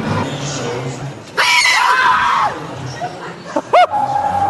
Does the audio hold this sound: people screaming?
yes